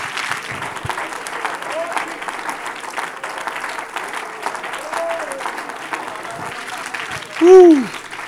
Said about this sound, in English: Hallelujah. Somebody ought to just clap your hands and worship him, asking him to help us tonight.